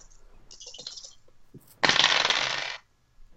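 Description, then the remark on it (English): A few light clicks, then a loud rattling clatter lasting about a second as ten-sided dice, re-rolled in a tabletop game, tumble across a hard table surface before stopping. No one speaks. “Just re-rolling the lowest dice, but I've gotten a 9 so far at the highest.”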